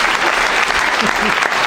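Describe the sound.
A loud, steady wash of audience applause at the end of a comedy bit, dense and crackling throughout, with faint voices calling out underneath the clapping.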